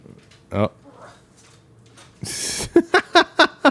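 A cat meows: one short call early on, then after a brief burst of rustling, a quick run of five short, insistent meows in a steady rhythm.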